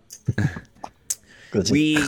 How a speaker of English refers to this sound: I'm gonna cough for a second. Hold on. I got something stuck back there. It's a hot dog or something. A wiener.